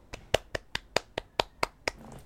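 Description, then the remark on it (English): A quick run of about nine hand claps in a steady, even rhythm, sharp and crisp, with every other clap a little louder. No voices, just a faint murmur after the last clap. “But I'm just wondering if we clapped on air, would people be concerned?”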